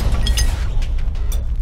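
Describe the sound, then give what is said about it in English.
A loud explosion sound effect standing for the Big Bang, with a heavy, sustained low rumble, crackling bursts of debris near the start and again toward the end, and no voices. “Then, due to chemical reaction, there was a ginormous bang!”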